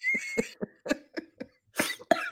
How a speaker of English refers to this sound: So, sorry, coughing fit.